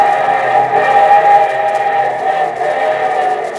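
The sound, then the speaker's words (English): A loud, sustained steam whistle blows steadily throughout, its bright harmonic tone held over a low, rumbling locomotive chug, with no voices. “And from Hollywood, here comes our star-studded show train.”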